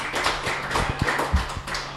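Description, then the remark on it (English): A crowd applauds the winners of a quiz question with dense, steady clapping, many overlapping hand claps forming a bright, sustained patter at an even loudness with a few sharper claps standing out. “It's okay to applaud for that as well.”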